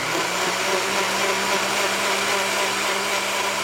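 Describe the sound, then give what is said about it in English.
A blender runs steadily at full speed mixing methanol, lye and vegetable oil to make biodiesel, a loud, continuous motor whir with a churning, grinding hum that holds constant throughout, with no voices. “It's actually a very empowering experience to make your own fuel, even if you just make a liter of fuel in a blender.”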